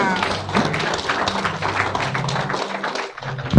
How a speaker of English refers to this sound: Clap for Jesus.